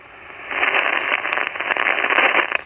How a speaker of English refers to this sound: Static crashes up high. Not a lot of activity on 80 meters, but you know I have it.